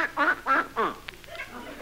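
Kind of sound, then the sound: animal, duck quacking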